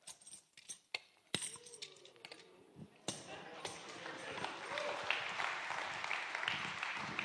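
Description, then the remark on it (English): An audience bursts into applause after a few sharp knocks and clinks, the clapping swelling into a dense, steady roar of many hands that carries on to the end. “I need just to clap after I do this, okay?”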